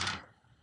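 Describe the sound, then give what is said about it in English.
A quick clatter of dice hitting a tabletop, one sharp burst that dies away within a fraction of a second, leaving faint background noise and no voices. “Where's my dice? So many of these dice.”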